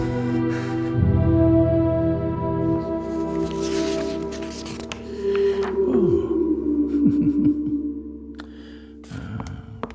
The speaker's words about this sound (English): Doctor, what's that noise? Is there something wrong? That's not noise, it's photon interference. Drifting from the galactic reefs. The sound of space. Some people call it the music of the spheres.